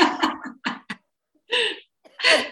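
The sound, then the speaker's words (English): A loud coughing fit from a person on day five of COVID: a quick cluster of rough, choppy coughs, then a pause and two longer, harsher hacking bursts. “I mean, listen, don't make me laugh. I'm having a coughing fit.”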